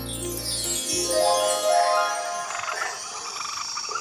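A frog croaks loudly, deep throaty croaks at first giving way to higher, chirpy calls that continue steadily to the end, with no one speaking.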